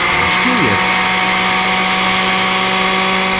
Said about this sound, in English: Right after this word from one of the fine members of the Poison Creek Mall Merchants Association so they can run the blender.